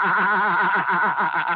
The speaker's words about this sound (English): What do you call those construction things? Company? They're removing snow. Oh, snow removal?